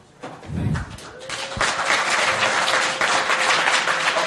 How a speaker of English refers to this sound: Finally, let's get a round of applause for the organizers, for everyone who put this together.